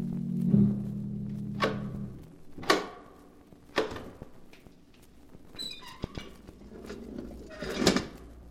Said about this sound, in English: Once again, the keeper of the book has opened the ponderous door to the secret vault